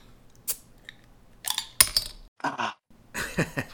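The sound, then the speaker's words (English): Glass clinking during a toast with Yuengling beer in Florida: a few sharp, bright knocks of glass against glass, one with a brief ringing tone, spread over a few seconds with no one speaking. “It's one that both your mom and I enjoy, so I'm going to have a little beverage of that. So, all right, here we go, and cheers to you. Cheers.”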